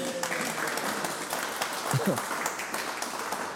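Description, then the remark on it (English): An audience applauds a quiz contestant for a correct answer, with dense, steady clapping that holds at an even loudness throughout, with a brief voice or cheer surfacing partway through. “Big round of applause.”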